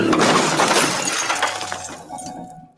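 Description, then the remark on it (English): A car crashes into a dirt pile with breaking glass: a loud, bright burst of shattering that rattles and tinkles on, fading out over about three seconds, with no voices. “Yeah, but you don't just crash people's fucking cars”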